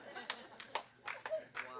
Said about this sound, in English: So I couldn't get a whole bunch of hand claps up in here.